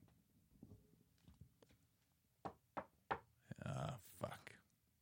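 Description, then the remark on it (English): Three firm, evenly spaced knocks on a door ring out, followed right after by a voice speaking. Faint, scattered tapping and low murmuring come before them. “Oh, shit. Let me get the door.”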